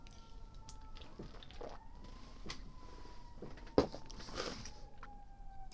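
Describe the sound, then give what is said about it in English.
Emergency sirens wail faintly and steadily, their tone slowly rising and falling over a low outdoor rumble, with a few soft knocks and a brief sharp click. “I hear sirens. Pretty used to that out here.”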